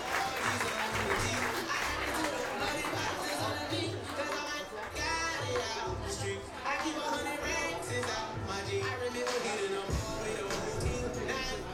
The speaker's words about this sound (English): Big round of applause for all of them. Great job what you're doing this year.